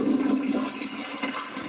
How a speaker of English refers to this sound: All right, I'm going to hit the flush, and then I'm going to just scoop all the Nutella down and back up the camera so that hopefully we can see what's happening.